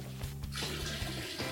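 Liquid, not water, splashes and sprays onto a person in a steady rushing burst, fairly loud, over a low humming undertone, with no voices.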